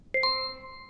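A game show buzz-in ding as a contestant buzzes in first during a Muppet picture quiz: two quick bright chime notes, the second slightly higher, ringing out and slowly fading, with no voices.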